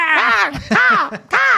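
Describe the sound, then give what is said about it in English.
A person vocally imitates an eagle's screech with three loud, harmonic, wavering cries in quick succession, each rising and falling in pitch. “Give your eagle roar or whatever.”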